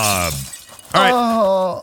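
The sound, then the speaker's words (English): A voice imitates ice shattering with two quick, loud vocal bursts, the second starting with a sharp crackling crunch and sliding into a wavering, ringing tone before cutting off. “He snaps his fingers and the ice shatters.”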